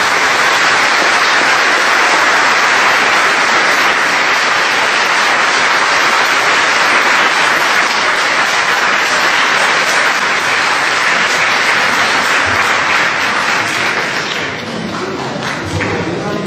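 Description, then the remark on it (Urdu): Loud, sustained applause from a large audience standing to welcome motivational speaker Syed Qasim Ali Shah as he arrives to give a motivation lecture, a dense wash of clapping that holds steady for about fifteen seconds before easing slightly at the end. “تشریف لاتے ہیں موٹیویشن لیکچر دینے کے لیے جناب سید قاسم علی شاہ صاحب, کھڑے ہو کے ان کا استقبال کیجیے اور میں اجازت دیتا ہوں کہ تالیوں سے ان کا استقبال کیجیے.”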